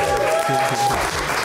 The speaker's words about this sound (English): I even know how to applaud. What a brilliant audience.